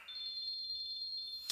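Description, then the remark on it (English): A doorbell chime, triggered by a motion sensor, rings as one thin, high electronic tone, held steadily for over a second and then cut off by a short click. It is fairly quiet, with no voices. “The doorbell chimed.”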